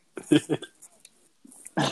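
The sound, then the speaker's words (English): A short, low gurgling rumble of a stomach growling comes in a few quick bursts, moderately loud, followed by a brief rushing noise at the end. “Here's my stomach growl in the background.”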